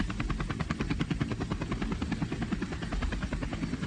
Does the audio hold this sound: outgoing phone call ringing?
no